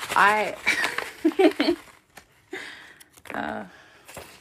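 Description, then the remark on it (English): Small bits of paper are crinkled and squished inside an envelope, giving irregular soft crackles and rustles in short bursts, after a brief vocal-like sound at the start. “If you like the sound of little bits of paper being like smushed up in an envelope, this is the show for you.”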